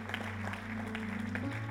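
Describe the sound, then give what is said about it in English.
A church audience at a morning service claps steadily and continuously for itself, a dense wash of many hands with no clear pauses, while a low sustained musical tone hums underneath throughout. “Why don't you give yourselves a big round of applause here this morning?”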